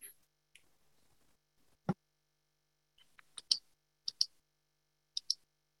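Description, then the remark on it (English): Crisp mouse clicks sound off irregularly while someone clicks through pages, several coming in quick pairs, with one duller, louder knock near the start of the sequence. “I was just clicking through the pages to see who is here.”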